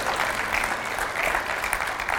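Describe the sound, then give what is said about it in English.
A crowd claps steadily, a dense, continuous wash of many hands applauding at an even level with no voices standing out. “And I know, you can clap if you want, yeah.”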